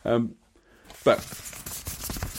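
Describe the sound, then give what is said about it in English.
A brief vocal sound, then crackling paper rustling that grows into a steady, scratchy handling noise for a couple of seconds. “There's some paper for you.”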